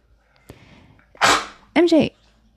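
A small dog, apparently with something stuck in its throat, sneezes with a sharp breathy burst, then quickly makes a second throaty, snorting sneeze with a brief tonal edge. Both are loud against a quiet background.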